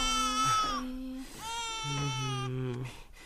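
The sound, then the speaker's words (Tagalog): A baby cries in sustained, wailing bursts, loud, the pitch rising and falling across several drawn-out cries with brief breaths between them. “Ano nangyayari dito? Ba't dito umitigil sa pag-iyak ko?”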